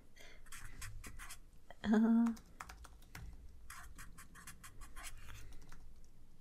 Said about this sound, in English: Like, let me get my diary. Okay. One second. I'm writing down names.